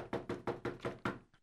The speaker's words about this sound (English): Well, anyways, he walked across the big field, and he knocked on the big door.